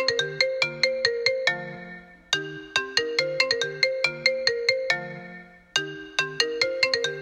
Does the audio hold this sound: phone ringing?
yes